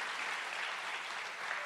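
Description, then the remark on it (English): A crowd applauds for the Lord, many hands clapping together in a dense, sustained wash of sound that holds at an even loudness throughout, with no voices standing out. “Hey, will you give the Lord a bigger hand clap for a moment?”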